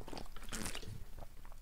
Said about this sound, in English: Had some water.